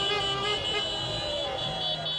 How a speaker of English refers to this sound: For people driving the Cinquecentos around piazzas at 3 a.m. honking.